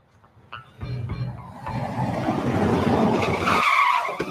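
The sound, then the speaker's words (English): A car carrying three men roars in and skids to a stop outside a restaurant, its tires screeching loudly over a rumbling engine for several seconds, with no voices. “Three guys pull up outside, jump out of a car.”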